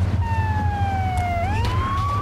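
A police car siren in a video game, from a stolen cop car, wails steadily, its pitch sliding slowly down then sweeping back up, over a loud low rumble of engine noise.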